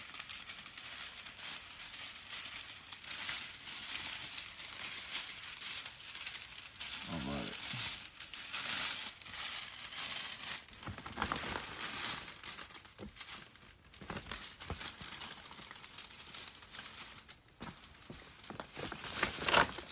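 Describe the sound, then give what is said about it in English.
Continuous crinkling and rustling of wrapping paper as holiday gifts are wrapped, with irregular louder crackles and bursts as sheets are folded and handled over the whole stretch. “Wraps holiday Gifts Live”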